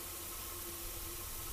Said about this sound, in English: It shifts quite drastically. Static, blip, pan, left, no, right. Some kind of strange science fiction sound, sort of flanging out. Shifts again, kind of mechanical